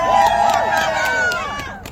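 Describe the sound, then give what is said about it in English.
A crowd cheers and whoops loudly for a speaker at a Canadian Women's Sex-Based Rights (caWsbar) gathering, many voices overlapping in a sustained burst with scattered claps, fading slightly toward the end. “Have a cheer for”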